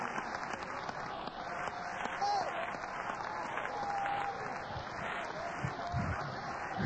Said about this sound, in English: Come on, clap your hands. Come on! Come on, clap your hands to Jesus!